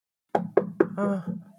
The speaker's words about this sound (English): Start knocking on the door.